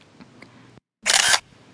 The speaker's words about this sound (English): The camera shutter hissed as he took a close-up of her angry face.